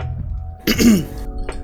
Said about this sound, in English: You should clear your throat.